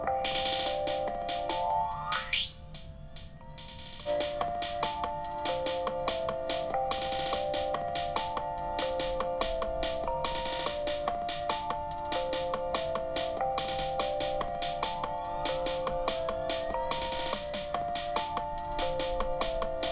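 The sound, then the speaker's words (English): An instrumental beat being built by clicking each instrument plays on a steady loop, with repeating tonal melody notes over constant percussive hits. The sound is dense and even throughout, and no one speaks. “It's on a straight loop, and I'm just clicking each instrument, seeing how I want it to sound.”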